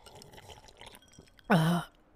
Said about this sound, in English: One of the things I want y'all to do is, you hear this? Grab a nice iced cup of coffee. All right. And slurp it. Hold on. Let me do it again.